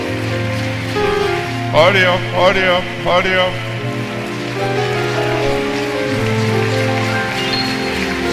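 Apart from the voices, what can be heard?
audience clapping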